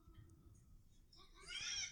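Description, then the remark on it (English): A cat video plays way too loudly from a phone someone is watching: after low background rumble, a single bright, tinny meowing cry rises near the end and holds briefly, moderately loud against the hum. “He's watching a video on his phone that's way too loud and we can all hear it.”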